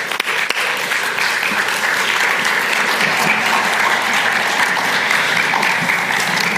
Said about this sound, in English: Give him a round of applause, can't we?